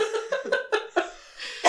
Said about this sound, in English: Now she's coughing.